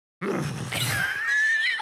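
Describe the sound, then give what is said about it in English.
A person imitates a horse whinny, a loud, nasal vocal neigh that starts abruptly and rises into a wavering high-pitched squeal, lasting under two seconds with no other talk. “Can you imagine the record? It'd be like, now the horse is happy. Now the horse is confused.”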